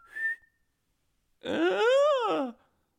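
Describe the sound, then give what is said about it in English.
A strange, bird-like call: a brief high whistle, a pause, then a longer rich warbling cry that rises and falls over about a second, with no talking. “That kind of sounded like a strange bird kind of curiously chirping outside of its cage, and maybe the handler freaking out that the pterodactyl is loose.”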